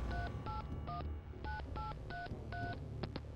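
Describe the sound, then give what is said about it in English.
A quick run of about nine touch-tone keypad beeps as a phone number is dialed to call the police in Manhattan Beach, California, in September 1983, each a short clean double-pitched tone, evenly spaced with the last two clipped close together, over a low steady background rumble. “In September of 1983, Judy Johnson picked up the phone and called the police in Manhattan Beach, California.”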